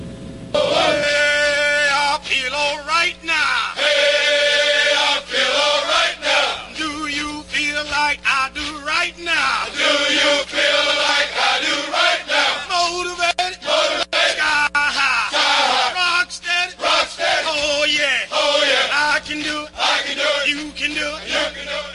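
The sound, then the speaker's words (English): A group of voices chants a military running cadence, a Jody call, in unison, loud and steady, with rhythmic sung lines repeating in a call-and-response pattern for over twenty seconds. “We'll be back right after we get this Jody in.”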